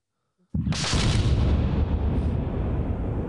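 cannon blast sound effect

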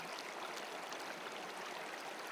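flowing stream water

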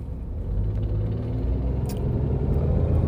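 motorcycle driving by

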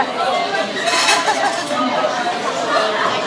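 glasses clinking

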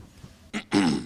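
throat clearing

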